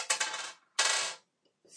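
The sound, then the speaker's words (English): Dice rattle and clatter across a hard table surface in two quick bursts as a piloting roll is made in a tabletop game, the second landing crisply, followed by a brief faint click and another short rattle starting at the end. “make a piloting roll. You've got the dice.”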